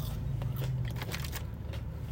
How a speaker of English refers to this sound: But let me try to eat some of this too, though, because my stomach needs food.